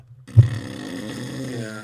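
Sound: voice imitating snoring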